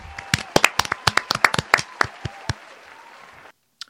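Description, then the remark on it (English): A short round of applause for DDG and Halle Bay having had a baby: a scattering of sharp, uneven hand claps from a small group, thinning out after a couple of seconds, with faint murmuring voices underneath, then an abrupt cut to silence. “So let me give them a round of applause.”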